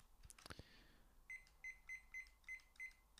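A kitchen cooking timer clicks and rattles as it's handled and set for 7 minutes, then gives seven short, evenly spaced electronic beeps, clear, with no talking.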